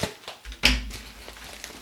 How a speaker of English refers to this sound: I thought maybe the package might be a little too strong there, this plastic wrapping. So I'm going to get the scissors out, and I hope I'm not going to damage the book at all. And I'm going to cut this top off here.